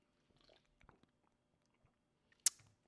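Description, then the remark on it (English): Someone takes a sip of a coffee-flavored beer brewed with coffee from Kenya, made in collaboration with Valerio Coffee Roasters: faint wet mouth noises and lip smacks, then one short, sharp slurp near the end, with no talking. “I'm gonna defer to you on this, the first sip.”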